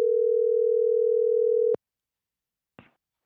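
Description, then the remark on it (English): A single steady ringback tone from an outgoing phone call sounds for nearly two seconds, then cuts off into silence, followed by a brief faint click like a line being picked up. “Did my phone ring? Yes, it rang.”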